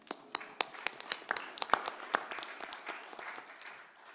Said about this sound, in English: You can applaud that if you'd like.